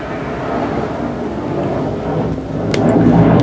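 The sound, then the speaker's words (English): A loud, continuous low roar of aircraft passing overhead, a broad rumbling drone that swells slightly toward the end, with no voices over it. “What is it? Flight test day? I'm really dead ass gonna have to end the podcast because these fucking planes, bro.”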